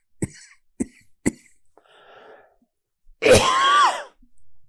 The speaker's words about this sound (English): There's no more phlegm that comes up now. It's just this damn dry cough, which I just attribute, I guess, to the, probably I'm just dehydrated still.